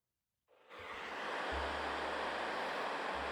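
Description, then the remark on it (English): Steady green noise played back fades in after a brief silence and holds as a dense, even hiss with a soft midrange emphasis, like surf, with a low hum underneath and no voices. “Give me green.”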